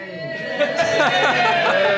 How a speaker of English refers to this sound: We'll have a big cheer or not. Do you think Bradford City can get promoted to the Championship next season? Yay. Cheer if you think yes.